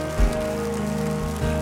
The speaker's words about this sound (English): I wish you would clap as people come because they'll come from across the room.